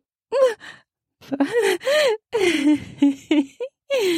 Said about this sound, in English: I gasp.